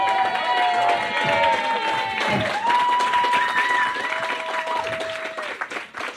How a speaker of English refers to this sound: Don't try to win us over now with a clap. You fucked it up. Wait till later and you can clap.